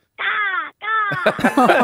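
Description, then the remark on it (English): A young boy's voice imitates a crow's caw, saying "car, car", each call drawn out and loud, then quick chatter follows right after. “Oh, that's the way the crow sounds now, as well.”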